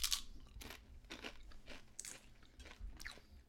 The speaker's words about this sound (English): Okay, I'm sorry to crunch right in the mic, but.